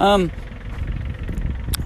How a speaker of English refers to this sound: Sorry, I couldn't speak a bit softer now. I was trying to get over that tractor.